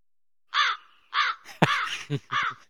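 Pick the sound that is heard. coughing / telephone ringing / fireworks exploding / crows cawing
crows cawing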